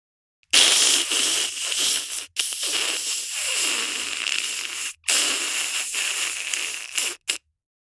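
An egg frying in a pan gives off a loud, steady sizzle with sharp crackles and pops. It cuts out briefly a few times before stopping. No one speaks.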